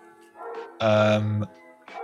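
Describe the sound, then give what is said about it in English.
A single loud, deep bark from a big dog rings out, drawn out for just over half a second, with softer voice-like sounds before and after it. “Oh, yes, you've got a very big dog.”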